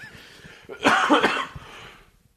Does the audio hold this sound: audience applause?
no